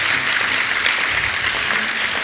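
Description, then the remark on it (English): A crowd applauds steadily for everyone who is visiting, a dense wash of many hands clapping at once for a couple of seconds, loud and sustained with no voices standing out. “Can we just give a clap to everyone who's visiting?”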